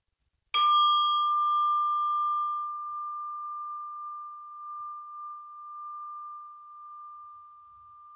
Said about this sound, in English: And I will ring the bell to end this practice.